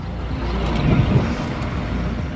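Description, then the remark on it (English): About 20 heavy aid convoy trucks carrying medical supplies and canned food rumble past through the Rafah crossing from Egypt into Gaza, a steady, loud low engine drone swelling slightly midway, with no voices. “About 20 trucks were part of the convoy today.”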